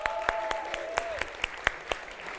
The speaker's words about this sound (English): Hands up if you weren't on the church weekend away here 3 years ago. You're relatively new to the church in the last 3 years, or you just weren't around last time. Hands up. Okay, round of applause for these guys.